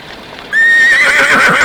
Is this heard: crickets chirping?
no